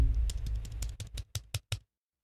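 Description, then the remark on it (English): Rapid typing on a plastic wireless keyboard: about a dozen sharp, clacky keystrokes in a fast, slightly uneven rhythm, fairly loud, stopping abruptly into silence. No one speaks. “I mean, if you go to town on like one of those Apple wireless keyboards, they can get kind of loud with the plastic clacking.”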